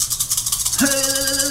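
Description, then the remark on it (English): Dice, two black and two white for each player, are rolled, rattling and clattering in a quick, steady series of clicks throughout, and about halfway through a sustained, steady tone joins in underneath the rattling. “We roll zores, the dicey wicies.”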